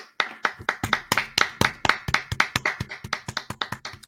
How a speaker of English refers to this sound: Before we start, let's give him a round of applause for completing the race.